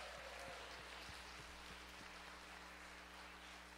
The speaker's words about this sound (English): If you are a first-time guest with us, I want to personally just tell you we are thrilled to see you today. And can we do this today, church? Can we give all our guests this morning a hand clap of welcome?